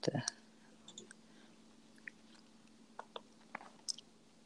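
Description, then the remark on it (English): Quiet wet mouth noises: soft lip smacks and tongue clicks scattered irregularly after a slightly louder smack at the start, with a swallow among them. “Like, you keep like making like wet sounds with your mouth.”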